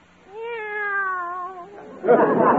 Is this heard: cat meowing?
yes